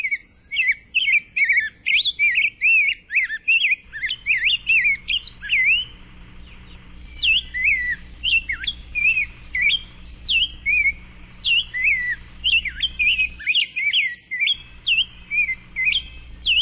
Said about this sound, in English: The scarlet tanager. Mm. And rose-breasted grosbeak is another one that sounds pretty similar. Yes, it sounds like a robin that took some singing lessons.